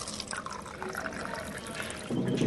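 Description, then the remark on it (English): Water pours steadily from a water cooler in a church basement into a cup, a continuous trickle that swells slightly louder near the end as the cup fills. “Right next to it is a water cooler that everybody uses instead.”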